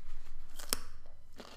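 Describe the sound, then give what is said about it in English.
A single sharp crunch as someone bites into a crunchy pickle, with softer crackling just before and a faint second crunch moments later; no one speaks. “That's why I like them, because they're always crunchy like that.”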